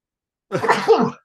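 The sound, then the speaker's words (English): A single loud sneeze bursts out after a moment of silence, a sharp breathy explosion that trails off quickly with a slight voiced tail. “Say, hold on, I'm going to sneeze.”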